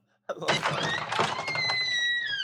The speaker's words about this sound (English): Oh, that's the door opening.